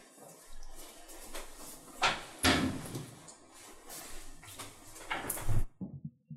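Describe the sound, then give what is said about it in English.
Furniture handling: a chair is fetched, dragged and shifted with scraping and a few heavy knocks and bumps, ending in a firm thud before a short quiet tail. “And I think, let me just get a chair.”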